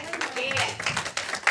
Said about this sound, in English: And give God a good hand clap of praise.